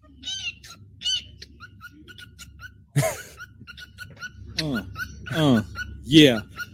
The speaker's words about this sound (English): That's a bird, folks.